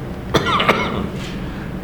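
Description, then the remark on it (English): Two sharp coughs from one person, a quick pair about half a second apart, followed by a faint breathy sound and a brief click at the end; no talking. “Boy, I haven't coughed all morning, and here I am, just perfect timing.”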